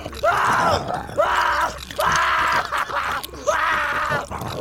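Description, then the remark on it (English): A harsh, guttural human scream from a person lying on the ground with a chain wrapped around their leg while another person bites them, repeating in four long, strained bursts with brief gasping pauses between them, loud, with no other talking. “Like, the person's leg, or the chain is wrapped around the person's leg, and they're laying on the ground, and they're letting out this just horrible guttural scream while another person is over top, like, biting.”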